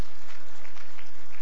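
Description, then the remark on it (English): A short, restrained patter of polite clapping from an audience, steady and fairly even, lasting only a moment with no voices over it. “It's called the polite clap.”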